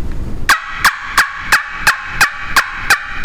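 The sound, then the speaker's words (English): A loud, sharp series of about nine evenly spaced turkey yelps from a game call, made by pulling the air back with the throat, ringing out clear with a steady rhythm and no talking. “I mean, that will strike a turkey. A turkey will gobble at that at unbelievable distances.”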